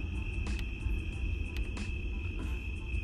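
Crickets trill at night outside on a patio in a steady, unbroken high-pitched drone, with a low background rumble and a few soft rustling bursts underneath; nobody speaks.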